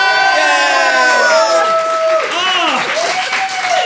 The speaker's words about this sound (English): Thank you. Thank you. That's the most applause we've ever got for getting one thing right.